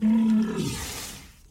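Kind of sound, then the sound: animal, walrus vocalization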